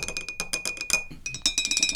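Drumsticks tap rapidly on a glass ashtray on a table in a quick, steady pattern, each hit bright and clinking with a high ringing tone, pausing briefly midway before resuming the busy rhythm.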